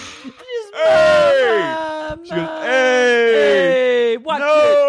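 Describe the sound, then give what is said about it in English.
A voice imitates a woman screaming in agony as her hair is pulled, with loud, drawn-out, strained wails in three long bursts, sliding downward in pitch with short gasping breaks between them. “Then we cut to the Judice Manor and Melania's getting her hair pulled and she's screaming in agony. She goes, ah!”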